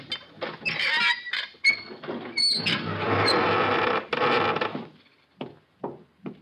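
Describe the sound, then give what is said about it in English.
A wooden door into the Sheik's room creaks open slowly and loudly, with a long groaning squeal and scraping, then a few soft knocks and thuds as it settles. No one speaks. “This door takes us right into the Sheik's room.”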